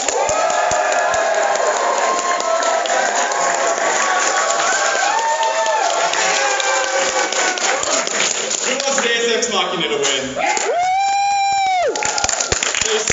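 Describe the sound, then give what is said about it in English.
A loud audience cheers and claps continuously to vote for the game Earthbound, with shouts and whoops rising over dense applause, including a long high whistle-like yell near the end. “Oh boy, alright, I think we gotta do this with my audience applause. Who wants Earthbound to win?”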